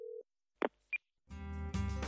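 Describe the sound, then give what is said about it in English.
A short steady telephone dial tone as a call is placed to Casper, Wyoming, then a click and a single high dialing beep, followed by a buzzy, harmonic-rich phone line tone that swells louder, with no voices. “we'll pick up the phone and give them a ring to Casper, Wyoming, where they're both sitting in their offices right now awaiting Paleo Nerds.”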